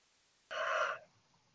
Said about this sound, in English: Another big yawn.